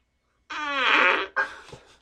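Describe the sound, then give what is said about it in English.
A loud, buzzy fart from an online video clip, with a rising harmonic tone lasting under a second, followed by a shorter, raspier sputter that trails off. Played through speakers, no talking. “He really holds the subreddit together in terms of fart videos. We'll play another from him.”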